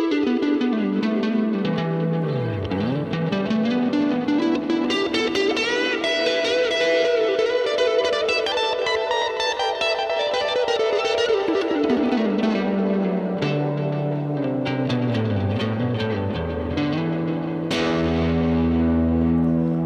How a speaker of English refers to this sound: Let's throw some more distortion on this guitar. There's definitely a buzz going on now. That's not fun.